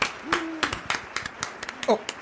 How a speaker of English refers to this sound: I should probably stop clapping for myself.